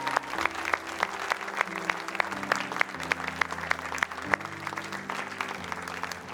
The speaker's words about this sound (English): If you're in Phoenixville, would you clap with the person in Montgomeryville? Would you celebrate with them?